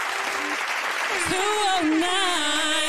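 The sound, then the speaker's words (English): An applause sound effect welcoming a guest: a crowd claps steadily for three seconds, a dense, even wash of applause, with whoops and cheering voices rising through the middle of it. “Give her a round of applause one time.”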